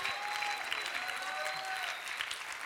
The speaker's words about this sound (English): After a message like that, come on and give Jesus a clap off, amen? Hallelujah.